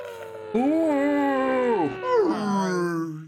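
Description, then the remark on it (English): A person imitates a whale call with a long, sliding vocal moan that swoops up and down in pitch, breaks briefly, then wavers and fades into a low drawn-out tone. “Can y'all make any whale noises?”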